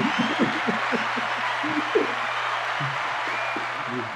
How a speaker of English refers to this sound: This has never happened in hip hop. Think about it. This has never happened. I gotta give y'all an applause for that. Yo.